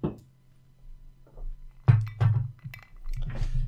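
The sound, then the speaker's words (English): A couple of sharp glass clinks as whiskey glasses are tapped together in a Christmas toast, followed by light handling clatter over a low background hum. “Got me whiskey. Yes. Cheers.”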